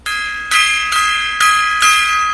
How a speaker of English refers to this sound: Gong. Lots of gong solos there tonight.